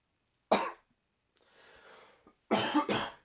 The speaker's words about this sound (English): Fucking coughing today.